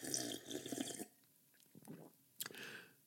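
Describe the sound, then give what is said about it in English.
A sip of water from a bottle: a brief wet rush of liquid, a short pause, then soft gulping and swallowing sounds with a final splashy slosh. No talking. “Mr. Brinkley took a sip of water from his Omni-Tide bottle.”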